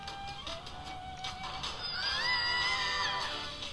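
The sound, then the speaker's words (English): A classic stock scream sound effect: a shrill, wavering cry that swells loudest midway through, over a busy background of noise and voices. “The iconic scream.”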